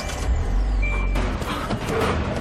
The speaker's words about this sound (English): Having learned how fast bears can run, it starts. Remote start on the all-new Hyundai Elantra.